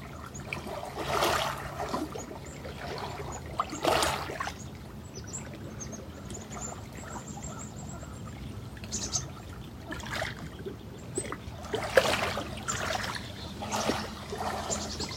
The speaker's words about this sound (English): Mama duck and her babies swimming by.